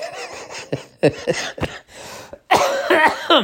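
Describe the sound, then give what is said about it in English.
A run of sharp coughs in an uneven rhythm, then a longer, louder rough stretch where the coughing blends into harsh, laugh-like breaths. “I only cough now when I laugh.”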